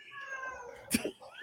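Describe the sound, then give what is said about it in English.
A male cat in a house gives a drawn-out, wavering meow, fairly quiet and in the background, followed by a brief sharp rustle or thump and a short rising vocal sound near the end. “and now I hear a cat in the background.”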